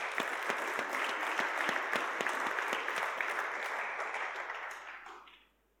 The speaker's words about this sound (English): So can we give them a round of applause as they come up?